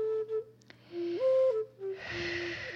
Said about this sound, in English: So right before you complete, slow down, breathe deeply, breathing deeply.